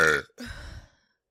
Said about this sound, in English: The belches. Beautiful.